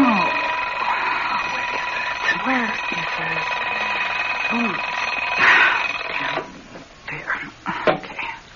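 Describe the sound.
An alarm clock rings loudly and continuously for about six seconds, a steady metallic jangle, with voices murmuring underneath; after it stops, someone speaks briefly.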